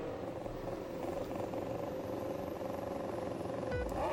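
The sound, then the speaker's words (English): A dense, steady roar of Formula One car engines idling and revving together as the final cars pull into their grid slots at the 2021 British Grand Prix, loud and continuous, with a sharp rising whine near the end as one engine climbs in pitch. “As the final few cars pop into their grid slot here, we've got Sergio Perez starting from the pit lane.”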